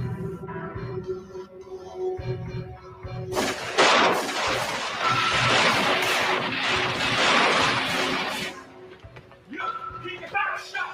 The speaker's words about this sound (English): They run in the restaurant and start blasting away.